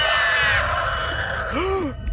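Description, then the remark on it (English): A woman throws her head back and screams loudly, a harsh, sustained shriek of about two seconds whose pitch swoops up and back down near the end. No talking. “She threw her head back like a lunatic and screamed.”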